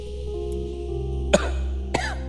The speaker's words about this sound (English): Cover your mouth when you cough.